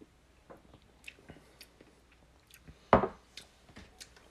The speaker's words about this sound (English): And I'm trying to see if I can wash it down with water, and then I'm going to try it again. Yeah, so here's my gulp.